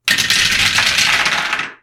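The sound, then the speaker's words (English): A handful of dice clatters across a hard table in a dense burst of rapid clicks, fairly loud, rattling for under two seconds before settling. No voices. “That was a lot of dice and only one success.”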